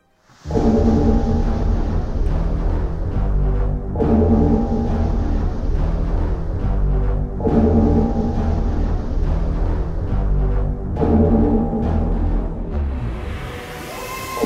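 The TARDIS Cloister Bell, a communications device signalling imminent disaster and calls to man the battle stations, tolls deeply and ominously four times at slow, even intervals. Each heavy, resonant strike rings out and overlaps the next, with no voices.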